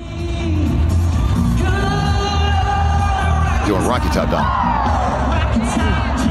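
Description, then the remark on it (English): A huge crowd of about 50,000 country music fans at Nissan Stadium roars continuously during a night concert, with loud screams, whoops and many voices singing along in a dense, echoing wash; a voice speaks briefly within the din. “With 50,000 screaming country music fans.”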